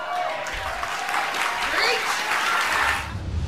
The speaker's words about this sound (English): Great job. Applause? I don't think killing an unborn child is something we should applaud, do you?